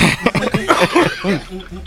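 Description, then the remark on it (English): A loud coughing fit from inhaling weed smoke: a rapid string of harsh, hacking bursts with strained, wheezy vocal edges, running continuously for about two seconds without pause. “No, it's a weed cough, not a corona cough.”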